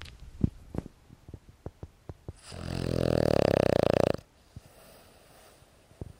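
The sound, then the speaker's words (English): A dog snores close to the microphone, one long, loud, rasping inhale lasting about two seconds, preceded by soft scattered taps and clicks and followed by quiet. “You can hear Rufus snoring again. Let me see if I can get the mic close to him.”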